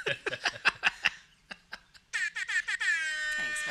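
air horn sound effect

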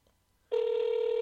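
telephone ringing

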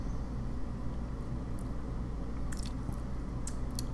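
sipping a cocktail

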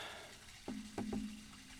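toilet flushing

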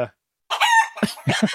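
chicken clucking

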